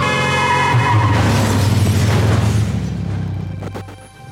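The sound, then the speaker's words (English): A car roars with a loud, sustained rumble and scraping noise, ending in a crashing impact into a nativity scene and clatter that slowly fades away. No one speaks. “But why the hell did you just crash into our nativity scene?”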